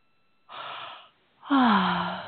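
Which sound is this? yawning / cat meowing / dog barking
yawning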